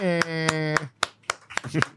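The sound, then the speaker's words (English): A canned applause effect, played by pushing a button as a guest is welcomed, plays as a steady series of sharp, evenly spaced claps, about seven in two seconds, with a held humming tone under the first few before it drops away. “If we, I'm going to push the, I got a button right here.”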